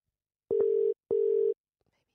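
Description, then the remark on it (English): A telephone dial tone sounds in two steady, loud, half-second bursts separated by a short gap, each starting with a faint click, as a call is placed to phone someone back, with no voices. “Get him back on the phone. I'll call him back.”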